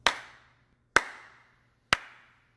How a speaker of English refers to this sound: And I'll give you a clap. Here's a fucking clap for you, huh?